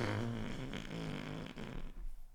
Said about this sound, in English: That was a wild fart noise.